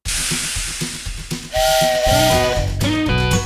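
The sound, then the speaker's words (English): A toy HO-scale steam locomotive chuffs in a steady rhythm, then its whistle blows loud, a long blast followed by a second, higher hoot, with steady hissing steam underneath. “Our little loco's got a long way to go. Hear my whistle blow.”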